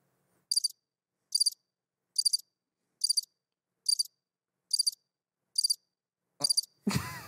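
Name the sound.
crickets chirping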